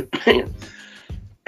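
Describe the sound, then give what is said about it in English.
A man clears his throat and gives a few short, rough coughs, in two or three quick bursts separated by brief pauses, prompted by saying the name Draymond Green. “This is a man's name in my voice makes me want to cough.”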